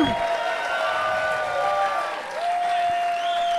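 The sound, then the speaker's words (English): An audience yells and cheers loudly for a few seconds, a steady roar of many voices with shrill, sustained whoops rising above the din. “Gentlemen, there's a lot of yelling.”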